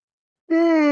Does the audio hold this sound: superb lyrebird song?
no